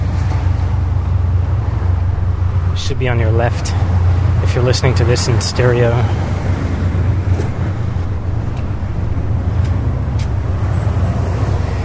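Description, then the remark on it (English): A boat's engine rumbles loud and steady as the boat passes under a bridge, a deep continuous drone with some wind noise, while a man crossing the bridge talks briefly over it. “That big loud sound is one of those boats going by.”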